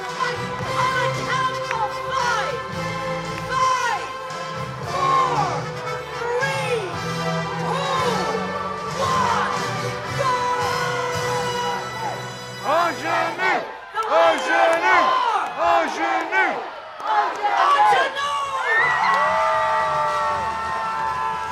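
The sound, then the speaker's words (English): A large crowd at a Carnival showdown roars, cheers and shouts continuously, with overlapping voices, whoops and chanting swelling and dipping throughout, loud, with a brief lull before the shouting surges again. “I'm gonna let you listen to the excitement, listen to this crowd, listen to the noise of one of the most important, most incredible showdowns that Carnival has ever seen.”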